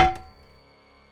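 A single heavy metallic clonk of a skillet striking the back of a man's head in a story, followed by a bright ringing tone that fades over about a second. No voices.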